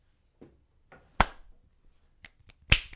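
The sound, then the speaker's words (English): A slow, uneven hand clap: a handful of sharp, crisp claps spaced out with pauses, the first couple soft and the later ones louder, with no talking. “that's a very slow clap.”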